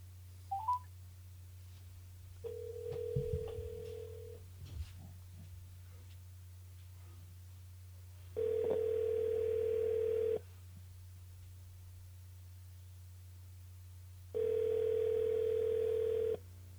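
A phone call rings out on the line: a short beep, then three long, steady ringback tones separated by pauses of several seconds, over a low constant hum. No one speaks.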